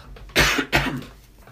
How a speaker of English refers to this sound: I'm going to cough again because this is just my life now.